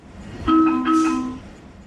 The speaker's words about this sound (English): It's a subway? It is. A specific sound for a specific subway. The door's closing. Oh, is that a ticket machine? Subway going down. The door is ajar. You tell me if you get this point, but it is a DC Metro doors closing alert.